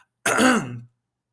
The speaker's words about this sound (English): So I might clear my throat a few times. So sorry.